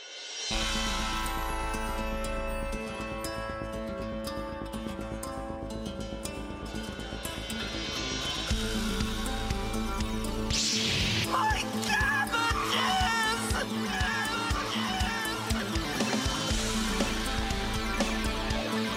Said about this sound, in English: Theme song time.